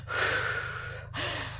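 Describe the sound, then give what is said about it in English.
A long, deep inhale lasting about a second, followed by a slow, audible, breathy exhale starting, with no talking: a calming breathing technique learned in preschool, used when upset. “She learned in preschool a breathing technique, and sometimes I've been doing it too.”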